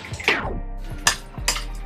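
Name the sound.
spoon stirring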